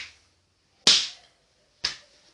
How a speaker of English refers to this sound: I'm slow clapping.